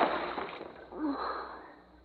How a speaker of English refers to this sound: See what you've done? You dropped it in the water.